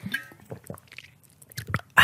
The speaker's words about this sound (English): I just heard myself gulping through the headphones and it's like, gulp, gulp.